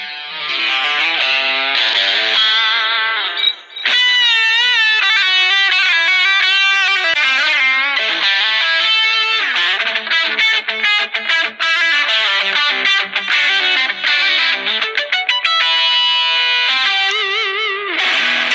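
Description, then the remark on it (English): An electric guitar played through a Spark Go portable modeling amp with heavy distortion and effects, loud and continuous, sustained chords and busy melodic runs with no voices over it. “So you can go 20 to 20 easy, or what? Yeah, do you want to hear it?”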